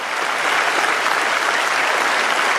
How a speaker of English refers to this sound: Applaud now, older people. Come on, come on.